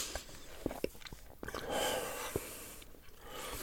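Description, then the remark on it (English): Someone crunches into an apple while letting go of their pinched nostrils, with a handful of crisp, irregular bites and chews standing out from soft breathing and faint background hiss. No one speaks. “Now, let go of your, as you're crunching, let go of your nostrils.”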